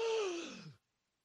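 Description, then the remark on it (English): One sharp, breathy gasp for air, voiced and sliding down in pitch, fairly loud, as a person comes up from the water and swims to the edge of a pool. It lasts under a second and cuts off into silence. “Splashing water, gasping, coughing, as you come pushing, swimming to the edge of a pool.”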